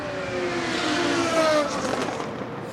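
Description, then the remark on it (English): A race car roars past on a circuit, going onto the high banks, its engine note rising and falling in pitch as it sweeps by, loud before fading slightly. “It's just going through onto the high banks now.”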